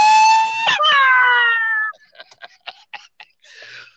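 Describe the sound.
A voice imitates a wolf howl: a loud, high, sustained cry lasting about two seconds with a brief break and slowly falling pitch, followed by short, choppy breathy bursts.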